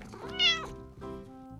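A cat meows twice in quick succession, a rising, drawn-out call followed by a shorter, steadier one, clear with no talking around it.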